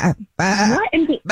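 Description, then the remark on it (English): A person imitates a goat with a few loud, wavering bleats in quick succession, each a nasal, quavering call separated by short pauses, played during a phone prank on The Jubal Show. “And unfortunately, that's not good news that you're hearing a goat right now.”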